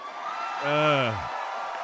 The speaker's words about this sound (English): I don't know who created Pokemon Go. And the crowd goes wild.